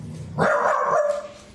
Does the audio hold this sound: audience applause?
no